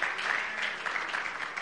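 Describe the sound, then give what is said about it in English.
A church audience during a sermon claps together as praise to the Lord, in a dense, steady burst of applause, the many overlapping hand claps blending into a continuous bright crackle with no pauses and no voices. “And if you are thankful for that, could you give the Lord a hand clap of praise?”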